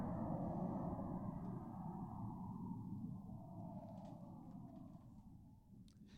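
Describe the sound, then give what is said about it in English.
An airplane passing in the distance: a continuous low, rumbling roar that holds steady for several seconds, its tone drifting slightly downward, with no voices over it. “It's still going, you know. That's a long plane. Yeah, you can hear it from the distance.”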